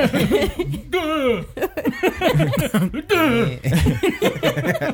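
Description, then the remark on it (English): A loud fit of reverse sneezing: rapid snorting inhalations and honking gasps in uneven bursts for several seconds, broken by two rising-then-falling whooping cries and laugh-like sputters. “She reverse sneezed into her brain.”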